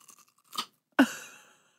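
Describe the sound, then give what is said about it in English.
Crunching of a carrot being chewed loudly into a microphone: a few soft crackles, a brittle crunch, then one sharp, loud bite that crackles and fades. “Take another bite of what you... Into the mic.”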